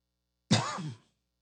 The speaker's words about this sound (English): Oh, man, this cough is getting bad. I got to go.